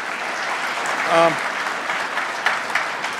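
Steady audience applause, a dense crackle of many hands clapping throughout, with a short vocal whoop rising out of it once partway through.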